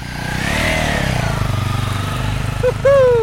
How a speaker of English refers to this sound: Two young guys on motorcycles. They look like something out of a Bond film. Identical bikes and matching gear, spare fuel strapped to their saddlebags.